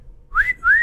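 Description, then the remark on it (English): A two-part catcall wolf whistle: a short, loud rising glide, a brief gap, then a longer whistle that swoops up and holds a high pitch before dropping slightly. No talking. “Because no one catcalls but, like, perverts.”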